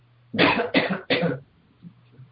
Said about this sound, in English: Go ahead and cough.